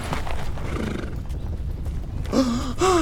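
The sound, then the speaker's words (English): Hooves clip-clop steadily in the first stretch, then a horse lets out a loud, wavering whinny, followed by another short neigh near the end. No one speaks. “They have horses.”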